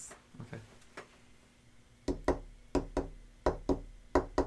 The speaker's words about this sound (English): Okay, you guys have knocked for quite some time. But yes. The door didn't automatically open.